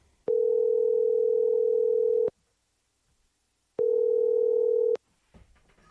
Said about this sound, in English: Let me try calling you back just on your cell phone.